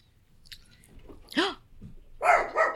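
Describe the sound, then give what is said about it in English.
A dog at a house barks three times in very strong wind: one sharp, yelping bark, then a quick pair of louder, harsher barks close together, rising out of a quiet, faintly rustling background. “Oh my gosh, sorry guys, the wind just was like really crazy on this house and then just started barking.”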